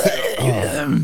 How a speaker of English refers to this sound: He's going to start with a huge phlegmy cough.